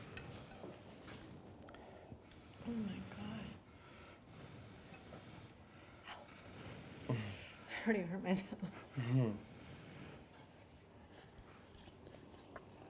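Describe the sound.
Soft, breathy puffs of air blown over a spoonful of hot soup with shiitake, chicken and broth, a few airy hisses rising and fading, with murmured voices and low background noise throughout.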